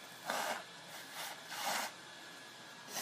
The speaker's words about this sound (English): You got to blow your nose. I'm warning you. I have to blow my nose. I'm sorry.